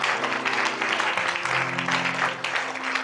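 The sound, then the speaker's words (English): Sustained applause for Jesus from a large crowd during a Christmas message, dense and steady throughout, with many hands clapping at once and a low hum of voices or tones underneath. “Clap for Jesus.”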